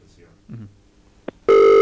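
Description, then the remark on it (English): Faint murmuring and a short click, then the ringback tone of an outgoing phone call to a caller waiting in the queue starts near the end: a loud, steady buzzing tone that holds without a break. “Imagine it rang out, how much of an anticlimax it's got.”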